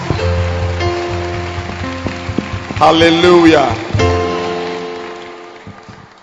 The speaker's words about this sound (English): Clap your hands for Jesus. Keep clapping, keep clapping, keep clapping, keep clapping. Keep clapping your hands.